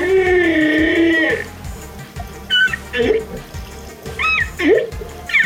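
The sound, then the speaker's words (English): Humpback whale song: a long, wavering moan with rich harmonics, followed by short upswept squeals and chirps, loud over a low underwater rumble. “These magnificent mammals are known for their acrobatic leaps from the sea and their complex singing patterns, which sound a little something like this.”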